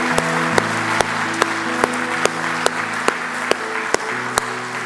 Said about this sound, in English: Can we give him a hand clap of praise today?